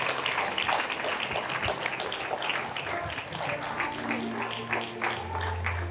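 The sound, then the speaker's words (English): A crowd applauds people as they come out of their seats and walk up to the front, many hands clapping in a dense, continuous patter at a moderate level, with a low hum rising underneath toward the end. “All of you, come on out of your seats and walk up here and give them a hand like you're clapping for your mother right now.”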